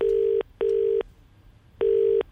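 A phone line's ringing tone purrs in a double burst of short, steady electronic tones, then pauses before another burst begins, as a call is placed to a gym patron. It sounds clear, with no voices.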